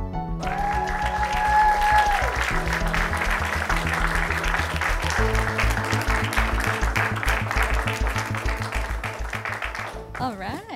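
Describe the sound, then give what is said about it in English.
Steady audience applause for a band at a live KCET event, a dense wash of clapping that carries on for about ten seconds over sustained music with deep bass notes, fading slightly toward the end. “Another round of applause for ….”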